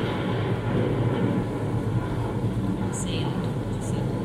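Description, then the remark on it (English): Heavy rain pours down in a steady, dense hiss and rumble that holds at an even loudness throughout, with a couple of faint high squeaks near the end. “Boy, look at it come down.”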